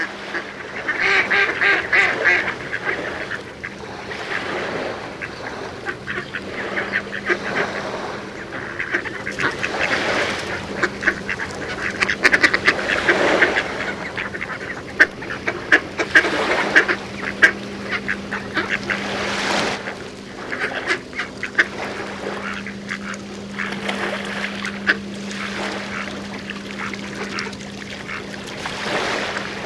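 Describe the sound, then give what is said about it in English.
A flock of marsh birds at a bird feeding station in a front yard in Connecticut calls continuously, a busy chorus of overlapping quacks and honks, with a low steady hum running beneath. “Twice a year, they take over the bird feeding station in author Mark Seth Lender's front yard.”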